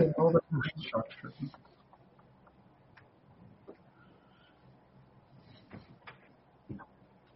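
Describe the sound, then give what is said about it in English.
Light knocking on wood, a brief cluster of sharper knocks at the start, then scattered faint taps at irregular intervals against a quiet background. “Oh, yeah, it's like someone knocking on wood very, very lightly. Like on a table.”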